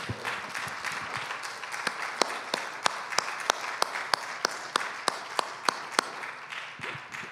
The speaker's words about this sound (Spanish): Le damos un fuerte aplauso a nuestro Dios.